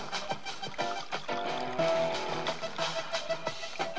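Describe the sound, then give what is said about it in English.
Coffee pours into a cup in a steady stream, with a bubbling, gurgling trickle and faint ringing tones as the liquid fills, lasting the whole few seconds. “I'm pouring some coffee.”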